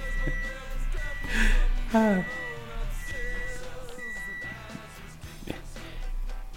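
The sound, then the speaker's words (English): A microwave beeps several times, short electronic tones spaced a second or so apart, amid clattering as its door is opened and closed and someone takes something out, with a brief voice-like murmur. “Yeah, I've been hearing all of this put microwave door opening and closing and beeping and and coughing.”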